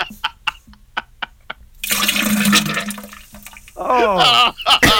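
Several short wet plops give way to a loud, sustained gush of liquid diarrhea splashing into a toilet bowl, followed by a brief squirting burst and a voice near the end.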